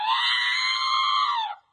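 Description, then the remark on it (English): The R2-D2 Operation board game's electronic fart sound, played when failing to take out the cranky crankshaft: one loud, buzzy tone holding a steady pitch for about a second and a half, then sagging downward as it cuts off, with no talking. “That's like an R2-D2 fart, I think.”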